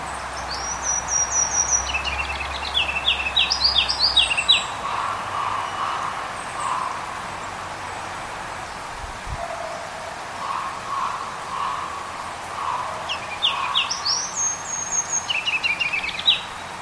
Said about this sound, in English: That was another version of a ruby-crowned kinglet.